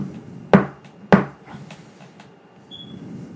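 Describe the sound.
Two loud, sharp knocks on a wooden door, spaced about half a second apart, followed by a few faint clicks and low background rumble. No one speaks.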